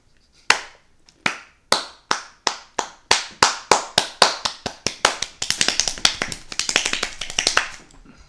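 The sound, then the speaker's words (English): Sharp hand claps begin evenly spaced, then speed up steadily until they become a fast, dense flurry of clapping. The claps are crisp and loud, with no talking. “I just started clapping real fast.”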